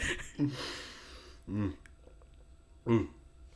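Someone choking on a sip of water, giving three harsh, throaty coughing splutters spaced about a second apart, each a short rasping burst with gasping breath in the quieter gaps between them.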